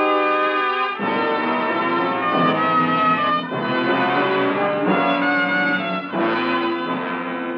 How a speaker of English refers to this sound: I returned the next night as the distant clocks were striking 11.